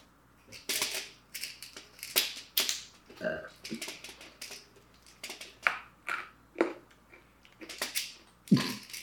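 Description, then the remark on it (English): Someone munches and crunches hard candy, a steady run of sharp, brittle cracks and grinding chews in irregular bursts, fairly loud and with no talking over it. “You munching and crunching over there, huh?”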